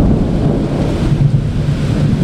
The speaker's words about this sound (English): in South St. Louis, and it is an absolute downpour out here. I actually have to move because I'm starting to get a little wet. Just constant lightning and thunder and cicadas screaming. This is kind of our summertime soundtrack here.